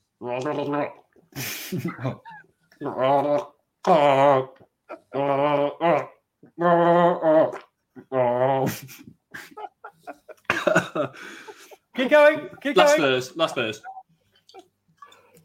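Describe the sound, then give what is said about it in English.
Someone gargles a song with Aldi beer in their mouth, a string of bubbly, warbling sung phrases split by brief breaths, the pitch rising and falling, with a few sputtering bursts toward the end. “Gargling … with Aldi beer in my mouth.”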